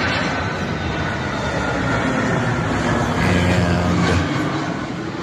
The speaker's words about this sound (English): Okay, here's the airplane coming in again. Again, it's a DHL 757-200.